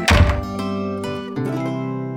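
A door bangs shut with a heavy, low thunk, followed by a sustained ringing tone with a few softer knocks as it settles. No one speaks.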